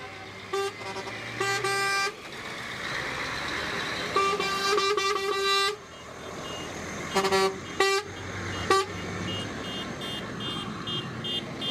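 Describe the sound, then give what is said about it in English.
Loud truck horns blare repeatedly in bursts from a convoy of dozens of trucks and hundreds of cars in Wodonga, Victoria, Australia, heading to Canberra, some long and overlapping, over a steady rumble of heavy traffic, with more honks answering in the background. “We have dozens of trucks here in this particular convoy with hundreds of cars.”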